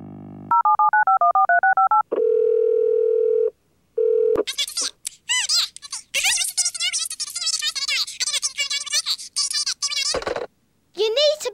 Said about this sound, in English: I made a quick phone call.